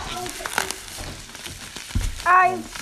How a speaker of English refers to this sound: It's all there, it's all in that one package. It's wrapped in bubble wrap.